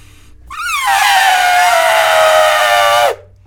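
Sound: voice imitating elephant trumpeting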